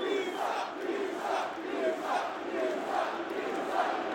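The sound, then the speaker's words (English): A large arena crowd in Cardiff, shocked by a wrestler's heel turn, roars and murmurs in a sustained, dense wash of voices, swelling and falling in waves with no single speaker standing out. “I mean, the crowd in Cardiff is shocked.”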